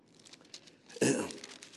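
Paper rustling and crinkling as many Bible pages are turned to Ephesians 4, soft scattered flips at first, then a louder burst of riffling pages that trails off.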